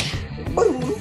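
One sharp sneeze bursts out midway, loud and abrupt, with a short voiced edge that fades quickly into background murmur.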